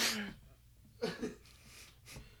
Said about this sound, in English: Dude, take your allergy meds. Dude, I'm sneezing like a mofo.